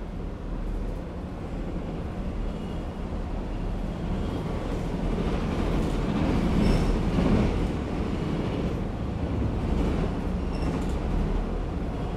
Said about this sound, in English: This is Madison and Wabash. This is an orange line train to Midway.